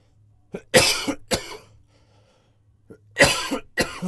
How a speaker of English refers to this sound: Choking on my water.